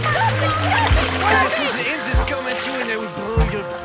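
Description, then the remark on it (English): Frantic, continuous splashing and thrashing in water as a frog and a bird fight, fairly loud, with squawking, croaking voice-like cries rising and falling over the churn. “And everybody looks over to see the frog and the bird are fighting in the water.”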